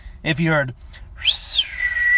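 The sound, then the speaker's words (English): A short voiced call is followed by a loud whistle that swoops up, then slides down and holds steady, an imitation of the parents' signal whistle calling a child home. “You know, like my dad, my parents, they had like a certain whistle.”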